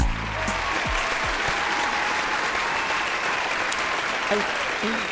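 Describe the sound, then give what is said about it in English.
Steady, dense audience applause opening the dating show Done Being Single, with many overlapping claps, holding an even loudness throughout and no clear voices rising above the clatter. “I want to add to that applause.”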